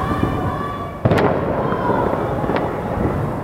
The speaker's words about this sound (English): It was the eve of Revolution Day, marking the anniversary of the 1979 revolution, and the regime was kicking things off with a fireworks display.